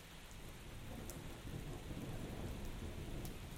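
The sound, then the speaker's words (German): Heavy rain pours down in a dense, steady hiss with a low rumbling undertone, continuous, swelling slightly louder halfway through. No voices. “Der Regen fällt zu schnell zum Zählen, von hier aus.”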